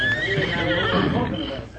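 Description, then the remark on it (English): A horse whinnies loudly, a shrill wavering neigh lasting nearly two seconds, with the faint shuffle of hooves underneath. “You stay here, horse.”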